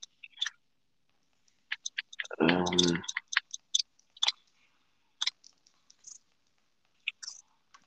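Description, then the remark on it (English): Irregular keyboard typing: scattered crisp clicks and short bursts of keystrokes, with one louder, fuller clatter partway through, and no voices. “I must be typing it out somewhere.”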